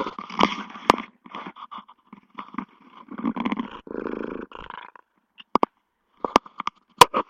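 A cat named Stella, having just jumped onto a table, purrs in a rough, pulsing rumble that rises and falls for about five seconds, then gives way to a few sharp, isolated clicks. No one speaks.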